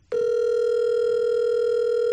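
signal or alarm, outgoing phone call ringing

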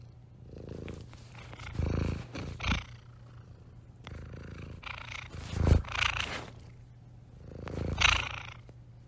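animal, cat purring

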